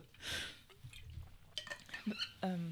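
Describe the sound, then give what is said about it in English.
Quiet handling noises from a water bottle: a rustling scrape, scattered small knocks and clicks, and faint liquid sloshing, with a brief voiced sound near the end. “And she was, sorry, my water bottle.”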